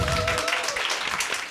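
Steady applause from an audience at an evening symposium event, a dense wash of many hands clapping, briefly overlapping a fading voice at the start.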